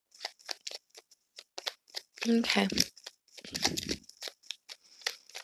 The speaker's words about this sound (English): I'm shuffling the Rider-Waite tarot deck.